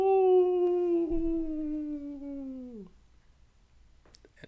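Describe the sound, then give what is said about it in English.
For Halloween, a person imitates a wolf with one long, loud howl that holds steady and then slides downward before cutting off, leaving near silence with a few faint clicks. “I'll just howl one more time.”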